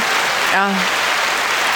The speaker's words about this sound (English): The crowd goes wild.